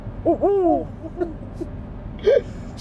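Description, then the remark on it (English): A person's voice imitates an owl with a quick run of warbling hoots, then a pause and one more short hoot near the end, fairly loud over faint background noise. “Kids, if you are wondering a way to annoy your parents for the rest of the trip, just keep making owl noises.”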